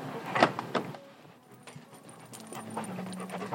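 An office door with a printed 'Office Dogs at Play' sign clicks and rattles open, followed by a low creaking drag, while a pack of four dogs pant and scuffle; no one speaks.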